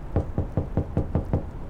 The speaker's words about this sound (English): Drawing a breath, Lars knocked.